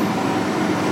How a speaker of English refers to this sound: Sorry, my garbage truck is here. I called for it. It's like the emergency.